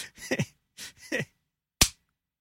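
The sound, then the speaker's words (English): A few short, muffled vocal sounds come first, then a single loud, sharp hand clap rings out on its own and cuts off quickly into silence. “That's why the clap is there. So it's super there. Easy to see the waveform of that clap.”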